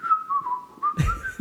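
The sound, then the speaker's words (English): A person whistles Hot Cross Buns, a short, simple tune of a few stepwise descending notes, clear, with brief rough bursts of noise breaking in toward the end. “whistling hot cross buns together or something”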